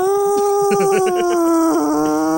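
A poor cat meow sound effect, found by typing in "kitty", that sounds like a man imitating a cat: one long, loud, nasal, whiny tone, steady in pitch and sagging slightly at the end, lasting a couple of seconds.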